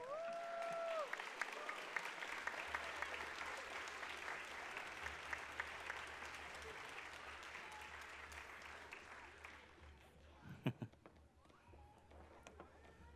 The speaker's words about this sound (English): Hey, church, let's stand up and give them another round of applause as they exit the stage.